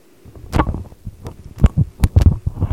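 Irregular crackling bursts and dull low thumps over a faint hum, static and background noise on a call line, fairly loud, with no one speaking.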